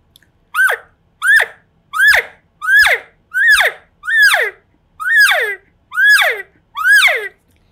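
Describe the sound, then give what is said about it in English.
Nine high, squealing elk calf distress calls in a steady series, each a sharp rising-then-falling whine with strong harmonics, evenly spaced about every 0.7 seconds with no voices present. “I'm going to focus on those cow sounds, maybe some lost calf, distressed calf.”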